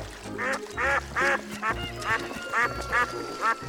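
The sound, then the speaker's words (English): A duck on a farm pond quacks repeatedly in rhythmic bursts, about seven harsh nasal quacks in quick succession, fairly loud over a low background rumble. “There are all sorts of fish in here, plus ducks and other aquatic animals.”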